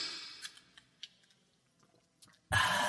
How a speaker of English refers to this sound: It's the end of the week, brother. Take a sip of my beverage.